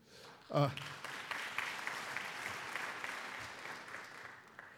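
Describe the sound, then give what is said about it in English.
An audience at Mount Zion claps steadily for several seconds for a group of high school students, a dense, even wash of applause that holds at a moderate level, with a brief voice or cheer rising near the start. “Again, let's give them all a big round of applause.”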